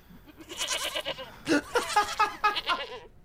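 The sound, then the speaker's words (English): A young goat bleats in a series of high, wavering cries, several quick calls running together over about three seconds, fairly loud with no talking. “Why are we still doing goat noises? No. I guess because he thinks it's funny. That one's a baby.”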